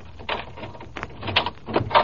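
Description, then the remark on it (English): A door chain rattles loose and a door is opened: a quick series of metallic clinks and clunks, with a louder scrape and knock near the end. “Take the chain off the door and let me in.”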